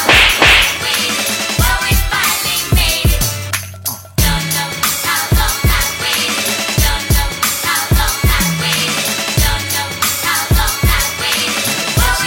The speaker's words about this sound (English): Consider yourself slapped.